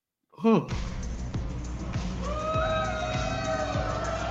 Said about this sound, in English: Oh, so it's a Cybertruck racing a Porsche 911, which is a pretty fast car, while it's towing a Porsche 911.